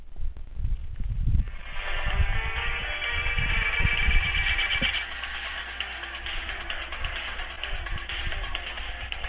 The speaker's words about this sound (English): I think you can hear that. Yep. Well, we just heard it, so that's my ringtone at the moment.